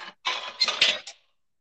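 Ceramic tiles clatter and clink as they are pulled off a backsplash and fall, a cluster of sharp, hard impacts over about a second, moderately loud, with no voices.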